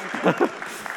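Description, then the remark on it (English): A brief burst of audience applause for the actors who have just acted out a story, a steady wash of clapping from a small group, with voices speaking over it. “Round of applause for our actors.”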